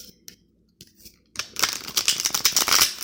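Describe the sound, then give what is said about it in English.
A deck of cards being shuffled to get it ready for a card reading: a few soft taps, then a dense, rapid burst of crisp riffling clicks that continues steadily for nearly two seconds, with no talking. “I'm shuffling the cards and getting them ready to go.”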